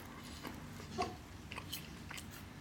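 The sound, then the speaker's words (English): Crunchy bites and chewing on a slice of dry toast, a run of sharp, crackling crunches spaced roughly every half second, with no talking. “I'm busting my tomb wide open in order to enjoy a slice of toast right now.”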